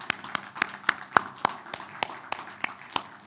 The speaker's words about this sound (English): Hey, let's give Jesus a hand clap this morning. Come on, everybody.